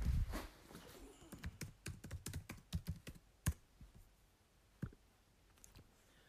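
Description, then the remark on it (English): Quick, uneven keyboard clicks from a laptop at home, a burst of typing that thins out into a few scattered keystrokes as the laptop is loaded up, with no one talking. “let's load up the laptop and see what Twitter's got to say”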